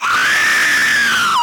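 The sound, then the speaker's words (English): A single piercing, high-pitched scream portending a death, held steadily for over a second, loud, rising slightly then sliding down at the end. No talking alongside it. “That scream sure curdles the blood, though, don't it?”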